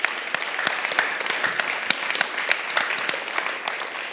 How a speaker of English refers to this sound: And I think it's only appropriate that you give the Lord a round of applause.